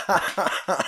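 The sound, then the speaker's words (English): A dog coughs three times in quick succession, each cough a short, raspy, harsh burst, fairly loud, with brief pauses between them and no talking. “You can hear him coughing.”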